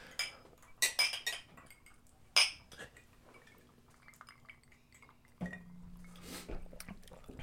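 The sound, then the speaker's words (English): Glasses of Michter's bourbon clink together a few times in a toast, bright ringing taps near the start, the loudest at about two and a half seconds, followed by quieter shuffling and a low steady hum. “Yeah, I was going to say we never cheers.”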